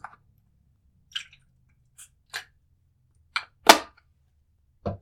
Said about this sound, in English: Gotta take me a sip of water.